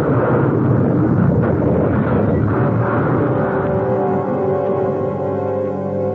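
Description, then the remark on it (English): A loud car crash: a sharp pop early on as a tire blows, then a continuous heavy rumbling and grinding as the car slides toward the road edge, hits a rock and rolls, easing only slightly by the end. No one speaks. “A tire blew, and the car slewed, sliding toward the road edge. Then we hit a rock and went rolling.”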